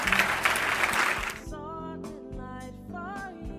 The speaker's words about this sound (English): I don't know about you. Can you clap your hands if you're excited about that?